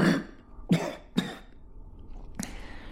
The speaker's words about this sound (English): I cough up something wet and bloody. The priest gives me a tissue from the bedside table.